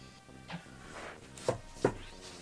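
Books being slid back onto a shelf and a new one taken: a soft scrape, then two sharp, hollow wooden knocks in quick succession, over a quiet hum with no talking.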